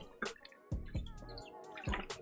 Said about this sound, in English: I need a swig of water.